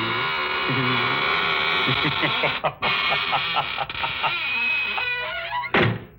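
A door creaks open with a long, wavering squeal that rises and falls for several seconds, then slams shut with a single thud. Loud and alone.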